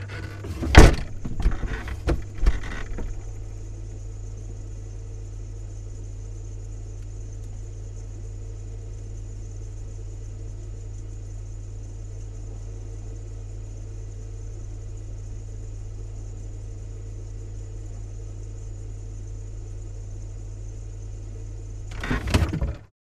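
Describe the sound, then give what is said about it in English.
A steady, low electrical hum from inside a running fridge, with a faint high whine above it, framed by clunking door sounds at the start and the end. “Okay, we're going to record the inside of a fridge now. Sound of a fridge.”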